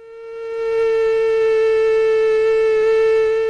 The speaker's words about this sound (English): Have a listen to the female mosquito, and these are Aedes aegypti mosquitoes. Here we go.